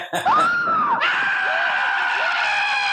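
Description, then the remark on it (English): A voice lets out exaggerated cartoon-style screams, loud: a wavering wail that swoops up and down, then breaks into a sustained, piercing shriek held to the end. “can you give us some cartoon screams?”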